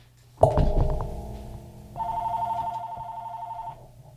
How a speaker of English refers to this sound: What is my landline ringing for? I have it in case of emergency.